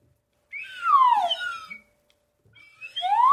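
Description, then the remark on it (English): A slide whistle plays two bright gliding phrases, swooping downward in pitch with a brief pause between them, then starting another rising swoop; fairly loud and alone, no voices. “You can do all the slide whistle you want.”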